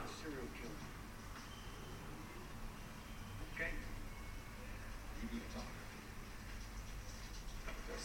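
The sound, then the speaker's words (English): Rain falls outside in a film sequence at an apartment block: a steady, even hiss that never lets up, over a low rumbling bed, with a few faint muffled thumps and murmurs now and then. “You hear the rain outside.”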